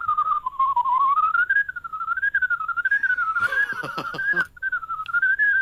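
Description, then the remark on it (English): A loud whistled rendition of Flight of the Bumblebee by a world whistling champion: rapid, continuous runs that rise and fall without pause, briefly overlapped midway by a short burst of clattering noise. “Oh, well, I do one called Flight of the Bumblebee.”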